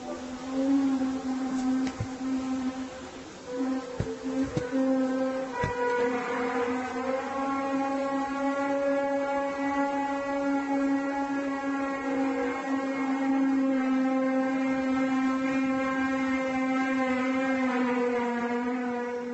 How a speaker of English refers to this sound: they call it a sky trumpet because supposedly it sounds like Gabriel's trumpets at like the gates of heaven.